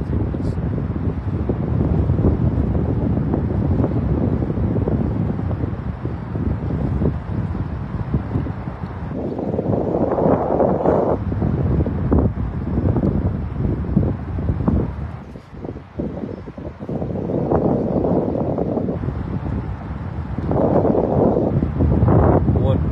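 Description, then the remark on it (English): Strong, cold wind whipping off the water in East Providence, across from Indian Point Park, buffets the microphone in a steady, roaring rush with gusty surges, loud, while a voice speaks intermittently over it. “Whipping off the water. I've forgotten how much colder it is by the water.”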